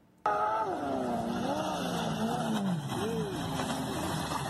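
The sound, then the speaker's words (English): A loud race car engine roars, its pitch surging and dipping through several revs for about four seconds before cutting off. “Race culture, dude. How do you not understand race culture? The final fun as in like car racing culture”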